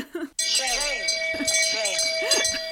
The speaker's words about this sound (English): Ring the bell, sound the alarm.